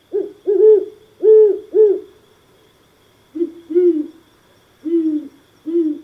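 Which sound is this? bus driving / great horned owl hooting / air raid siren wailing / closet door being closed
great horned owl hooting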